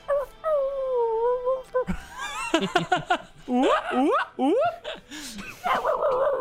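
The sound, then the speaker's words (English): A person imitates a wolf howling through a large room with a long, drawn-out howl, then breaks into a run of shorter rising yips and howls, loud and echoing, ending in a wavering wail. “This wolf let out this large roar of a howl, reverberating through this large room.”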